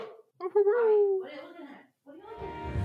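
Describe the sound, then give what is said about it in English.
A dog named Bobby howls in several drawn-out, wavering cries with sliding pitch, separated by brief pauses, and a low rumbling noise joins the last one. “I love that he howls.”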